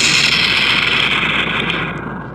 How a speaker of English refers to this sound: Is that Battleship? No, it was. It does sound like that, but there was a little toy cannon. It was called My Little Civil War Cannon. That was a toy? Yeah. Cool. It had a sound effect on it. I remember that.